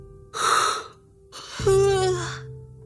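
A theatrical, put-on yawn up close: a breathy intake of air, then a longer voiced exhale that slides downward in pitch, with no other sounds around it.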